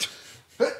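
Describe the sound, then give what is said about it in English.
A single sneeze, a short breathy lead-in followed by a sudden, sharp burst of air that cuts off quickly. No one is talking. “Bless you.”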